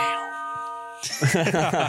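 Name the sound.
bell sound effect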